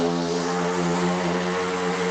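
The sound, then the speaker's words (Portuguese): A motorcycle passing by a house drones steadily, loud with a buzzing, harmonic hum that holds an even level throughout, with no voices over it. “Então, vai lá, confira e seja feliz se você quiser mais conteúdo para estudar inglês e menos motos passando na sua casa.”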